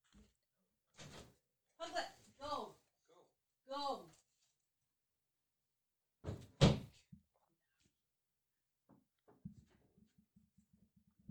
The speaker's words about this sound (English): I'm going to go deal with my dogs. Hold on. That is fine. One of the dogs is like hardcore going at the door. She's digging for dinosaurs.